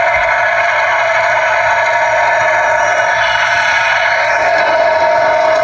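A huge crowd at a final rock concert in Kingston roars in a dense, unbroken wash of noise, loud and steady throughout, with no single voices standing out, almost like crashing surf.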